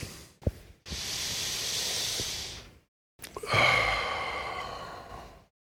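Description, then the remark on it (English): A slow, deep breath drawn in with a soft airy rush, a brief pause, then a long, hissing exhalation, quiet with no talking. “Focusing on the exhalation. Slow, deep breathing.”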